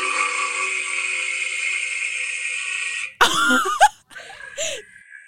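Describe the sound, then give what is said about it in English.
A walrus roar: a loud, rough, droning bellow held for about three seconds, then a few short, throaty grunts and snorts before it trails off. “That's a roar. Yeah. That's not a walrus. That's a walroar. So that's the sound that walruses make.”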